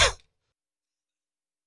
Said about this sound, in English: Excuse me. It's frustrating, man. I don't cough unless if I start talking, but obviously that doesn't make things great for radio.